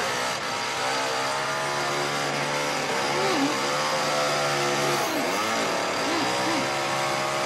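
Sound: chainsaw running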